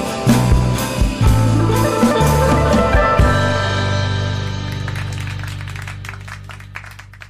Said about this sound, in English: I love it ends on the claps. I swear I've heard that in a few songs where like the last song has a clapping. It claps at the end.